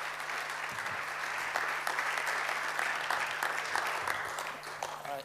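A church audience applauds at a morning service to welcome a guest speaker, a dense patter of many hands clapping at an even level for several seconds before tapering slightly at the end, with faint voices mixed in.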